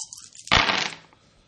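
Dice clatter onto a hard table with a sharp impact followed by a brief rattling tumble that fades within a second, fairly loud, with no talking.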